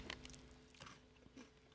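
Crunchy chewing of cookie snacks by people eating at a microphone, with repeated crisp bites and crackling crunches in an uneven rhythm, loud and near the microphone with no talking.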